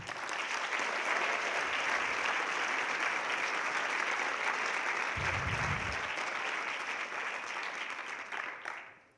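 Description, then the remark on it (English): An evening audience gives a sustained round of applause for students active in Focus the Nation, dense and steady clapping at an even loudness for about nine seconds before tapering off quickly at the end. No one speaks over it. “a whole core of students, many of whom are sitting around in these silly shirts that say, ask me about Focus the Nation, but these people have been active in doing this since October, and we really owe them a round of applause.”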